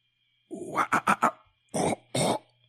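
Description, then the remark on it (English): Harsh, guttural vocal bursts from a rock singer in a song, resembling throat clearing: a rough drawn-out grunt, three quick staccato barks, then two longer rasping bursts, loud over a faint steady hum. “Half the song he spends clearing his throat.”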